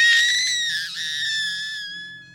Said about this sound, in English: Eventually, she did start yelling for help, which everyone up and down the shore heard.